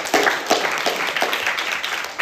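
A crowd applauds steadily, with many hands clapping in a dense, continuous patter that stays fairly loud and even throughout, with no talking.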